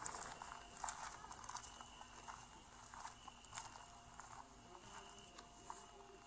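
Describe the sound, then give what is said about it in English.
A faint, steady chorus of crickets chirping at night in the mountains, continuous throughout, with scattered soft taps and rustles in the quiet background and no voices. “And, yeah, have listened to my lovely crickets.”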